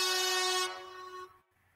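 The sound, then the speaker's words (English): A single loud air horn blast with a bright, brassy tone, holding steady for about a second before quickly fading out. No voices are heard. “That's supposed to be the air horn, but air horn is not the air horn.”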